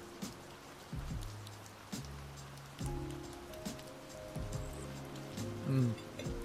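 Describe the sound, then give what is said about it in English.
A steady rain sound effect patters and hisses throughout, with scattered droplet taps, layered under a low, rhythmic tonal hum that pulses roughly every second. “So you guys have probably noticed the rain effect the last couple of episodes.”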